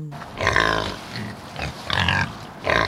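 A pig grunts and snorts in three loud bursts separated by short pauses, with no voices.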